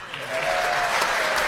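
Steady, dense applause from the crowd at a political speech in Georgia, following a call to keep cutting taxes; a broad wash of clapping that holds at an even, fairly loud level for the whole moment, with no voices standing out.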